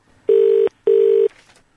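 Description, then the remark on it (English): A telephone ringing tone on an outgoing call: one double ring, two short steady buzzing pulses separated by a brief gap, heard clearly on their own with no talking. “This is what happened when I called Laura up about an hour ago.”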